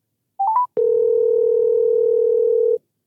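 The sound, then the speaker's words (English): A few quick electronic beeps and a click as a phone call is placed, followed by a steady, unbroken telephone dial tone humming for about two seconds before cutting off. No one speaks. “I'm going to give him a call.”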